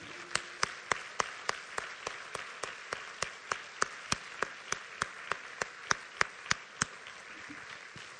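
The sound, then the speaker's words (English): A crowd claps together in a steady, even rhythm, sharp beats landing about three times a second over a dense wash of applause from many hands. No one speaks. The clapping is a hand clap of praise to the Lord, celebrating a victory and showing appreciation to people for their service. “So if you would, I'm going to put the mic down and we're just going to clap. We're going to give the Lord a hand clap of praise, and we're going to let these people know we appreciate them for their service.”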